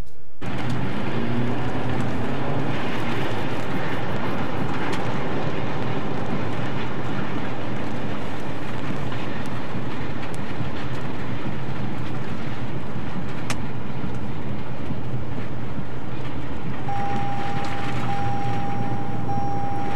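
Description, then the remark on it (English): Tornado-force winds roar and buffet a moving truck in a dense, continuous rush of noise with heavy low rumble, no voices, and a thin steady tone rising out of the din near the end. “whoever's driving this truck for our Light in the Mood section, if he is not a believer in Jesus before, I guarantee he is now”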